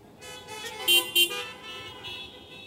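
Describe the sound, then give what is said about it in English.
A car horn honks, with a sustained tone punctuated by two short, sharp blasts close together, loud, with no talking. “And men, don't honk the horn if this is the opposite.”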